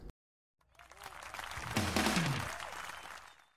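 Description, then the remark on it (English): Applause for professional game designer Matthew Foster as he is presented swells from a sudden start into a dense wash of clapping, peaks in the middle with some whoops and cheering voices on top, then gradually dies away. “Cue the applause.”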